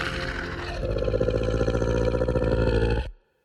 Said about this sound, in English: The two creatures unhinge their jaws the same way Chief Lester did, and you hear that terrible, familiar, rattling, choking shriek.